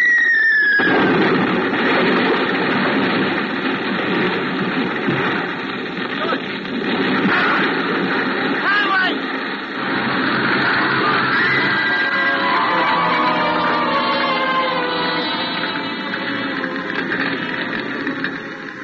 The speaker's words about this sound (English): Bombing the city, I suppose.